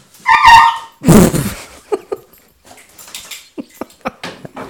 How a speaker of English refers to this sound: The dog saw somebody walk by outside and just went berserk. So hopefully that wasn't too terribly loud for you.